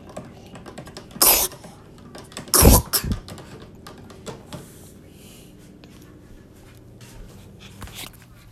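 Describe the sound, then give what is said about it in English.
A few harsh coughs burst out in quick succession, one then a tight pair a second later, followed by several seconds of quiet with faint small movements. “Besides this cough, you seem to be eating okay. That cough is not getting no easier, though.”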